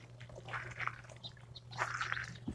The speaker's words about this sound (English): Or my first gulp of foam, as the case may be.